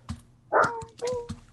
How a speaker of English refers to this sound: Whoops, sorry, my dog's barking.